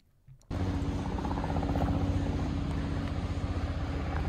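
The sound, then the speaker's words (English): A helicopter suddenly roars in overhead early in the morning, its loud engine drone carrying a steady, rapid rotor thump that keeps pulsing for several seconds with no talking. “Is the complete lack of helicopter and boat noise, which is quite nice so early in the morning.”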